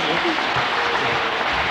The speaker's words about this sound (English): Give her a clap. Come on.